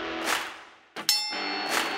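A wrestling ring bell is struck sharply and loudly, with a quick double clang followed by a bright, sustained metallic ringing. A soft rushing noise comes just before it.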